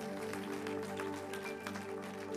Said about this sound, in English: And I'm grateful for every kids worker, every nursery worker at both of our campuses. Let's clap our hands for those that are leaving a legacy today.